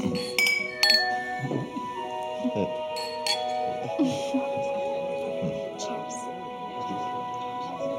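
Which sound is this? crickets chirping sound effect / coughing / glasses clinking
glasses clinking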